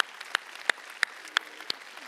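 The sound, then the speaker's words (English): An audience at a church service stands and claps together to honor mothers, a steady rhythm of about three sharp claps a second, over a faint background murmur. The clapping is moderately quiet, with no voices standing out. “can we stand to our feet and honor moms with a clap of the hand and a standing ovation this morning at church?”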